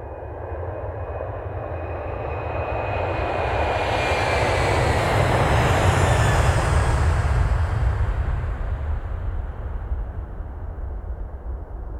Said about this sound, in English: Put on a jetpack and listen to these great sounds of jet engine.